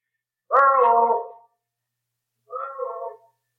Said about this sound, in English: Good gosh, will you listen to that? Well, that's one reason this is called Echo Valley. The cliffs around the waterfall down the trail make a perfect sounding board.